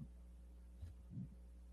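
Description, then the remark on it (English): Faint, muffled wind-like breathing noise on a microphone: two soft, low puffs over a steady low hum, with a hollow, slightly echoing quality and no talking. “Echo wind breathing.”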